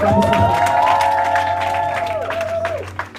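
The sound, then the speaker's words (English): A crowd claps hands for God in dense, steady applause lasting about three seconds, with a sustained mid-pitched tone held above the clapping that drops and fades near the end. “Let's clap our hands with God.”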